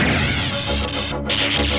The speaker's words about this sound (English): The ship approached cautiously. But without warning, the cloud sent a deadly energy bolt smashing into their shields.